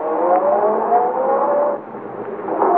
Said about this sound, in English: At the moment she's sending the big car roaring down the driveway, you're walking quietly into Arnold's study for the most important steps of all.